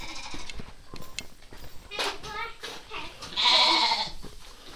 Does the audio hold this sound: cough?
no